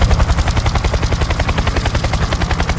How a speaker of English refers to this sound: Yeah, they do sound similar, although the grasshopper sounds a little more like a helicopter. Here's a helicopter.